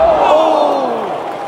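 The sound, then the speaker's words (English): A loud football crowd in the away end at Sellers Park roars steadily, a dense wash of many voices with some shouted, sustained tones rising out of it, easing off only slightly by the end. “You can hear the crowd here in the away end.”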